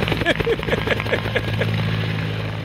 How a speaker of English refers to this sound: insert a helicopter noise.